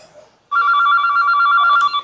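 A telephone rings loudly and steadily, its bright electronic trill starting abruptly after a brief quiet moment and continuing for over a second, with no one talking.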